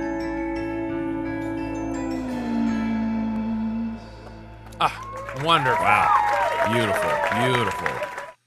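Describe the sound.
A sustained instrumental passage fades out, then a live audience bursts into loud applause mixed with whoops and cheering voices that continue for several seconds.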